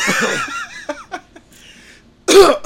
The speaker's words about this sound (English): Oh, sorry, got a cough. Got that Irish flu.